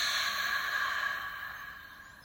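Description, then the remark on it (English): A long, airy breath, a steady hiss that slowly tapers off like a relaxed exhale, taken as a deep breath in and release during a short meditation. No one speaks. “Let's take a nice deep breath in. Breathing in all that cool air and release.”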